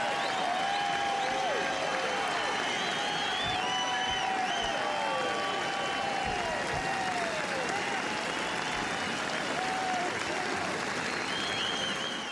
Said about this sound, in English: Yes, 22 seconds of applause, magnificent.